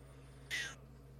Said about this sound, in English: I heard a meow. Oh, her old lady meow is getting way, like, old lady-er.